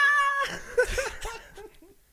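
woman screaming

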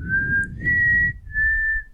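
person whistling

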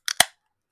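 beer can cracked open

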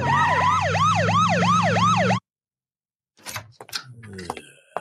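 ambulance siren

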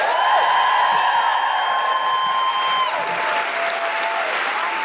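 audience applause and cheering

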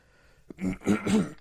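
cough

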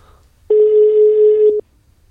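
telephone ringing tone

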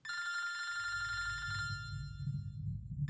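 telephone ringing

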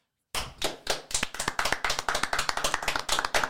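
clapping

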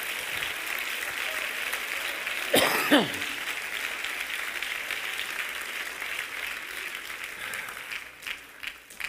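audience clapping hands

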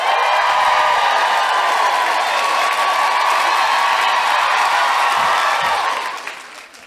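audience cheering and applauding

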